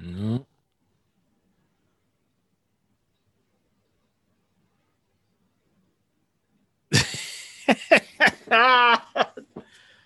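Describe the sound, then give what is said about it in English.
After a long stretch of silence, a cat meows: a few sharp, breathy bursts lead into a drawn-out, wavering meow, then a couple of short yowls. “Oh, what the hell? Meow mix.”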